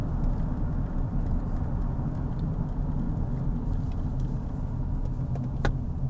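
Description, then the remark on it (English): A steady, low rumble of a car engine driven along really windy mountain roads blends with continuous road noise, holding an even loudness throughout, with a brief sharp click near the end and no one speaking. “I don't know whether you can tell from the sound of the engine and the road.”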